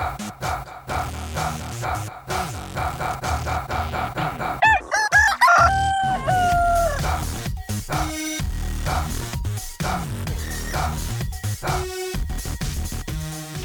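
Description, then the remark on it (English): A rooster-crow alarm clock goes off, a loud drawn-out cock-a-doodle-doo rising and falling in pitch over a busy, rhythmic looping backdrop that keeps repeating throughout. “So, nice little alarm cock clock you got there.”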